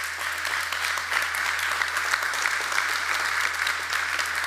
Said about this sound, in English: Now, some of you aren't clapping